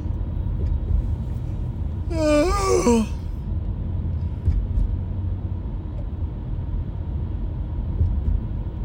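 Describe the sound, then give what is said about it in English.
A single drawn-out yawn, voiced and breathy, rising and then sliding down over about a second, from someone who has been talking a lot, against a steady low engine rumble of a moving car on the way to Cobb's Comedy Club. “I think I'm just yawning because I'm talking so much.”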